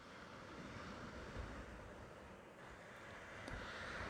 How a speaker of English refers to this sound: Close your eyes. Listen to the waves.